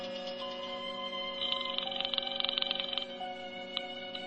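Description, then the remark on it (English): A telephone bell rings once in a rapid metallic trill lasting about a second and a half, over a steady background hum and a faint tick afterward. No one speaks. “I dialed and waited for her to answer.”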